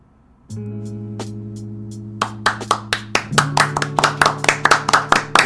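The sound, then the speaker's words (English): A steady sustained tone hums alone at first, then hand claps join in, starting sparse and building into quick, rhythmic, loud clapping by several people. “likes when we clap.”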